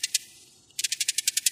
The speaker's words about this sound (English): For instance, we could play the call that the male would make when he meets a female. And we call it an attractant chirp or call. And it kind of sounds like a chick, chick, chick, chick, chick, chick.